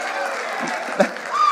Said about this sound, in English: So we're going to put up an image of beaches or mountains. So, okay, you guys got it. So cheer, let me hear it for mountains. Yeah! Okay.